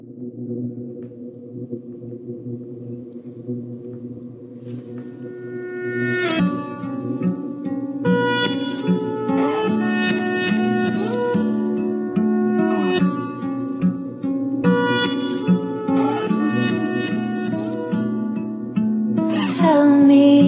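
A pop song opens with a soft, sustained low chord, then a fuller arrangement comes in around six seconds with steady rhythmic accents and bright melodic lines, growing louder toward the end.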